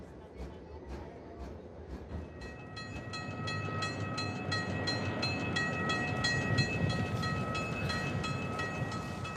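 A train rolls steadily along the rails, a continuous rumble with a rhythmic clatter of wheels at first, then a droning hum and high metallic whine that build slightly louder.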